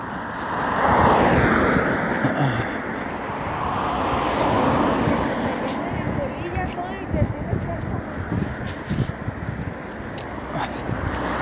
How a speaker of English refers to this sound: There's people walking, but there's no sidewalk, so everyone's walking on the road and there's traffic coming and it's kind of dangerous.